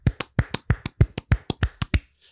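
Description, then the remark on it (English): A few people clap their hands to close out a bracket ranking, a quick, steady burst of about a dozen sharp claps, with no talking, ending abruptly. “And as we do at the end of every single bracket, we're going to go ahead and clap it out.”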